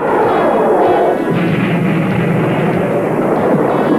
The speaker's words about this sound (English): We get the same kind of head-on transformation, and they blow even some more rocks up there, and we see Alex and Bruce using the anti-gravity cannon.